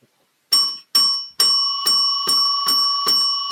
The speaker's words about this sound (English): Bell.